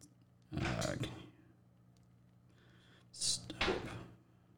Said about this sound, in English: My son is throwing blocks against the door in the bedroom and I can hear it.